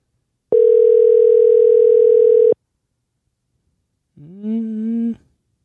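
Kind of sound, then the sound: signal or alarm, phone call ringback tone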